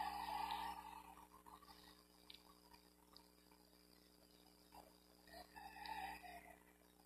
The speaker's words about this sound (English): Yeah, little rooster is acting a fool today.